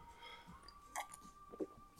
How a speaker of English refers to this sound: I drink Old English. I need another sip because this is a lot to talk about.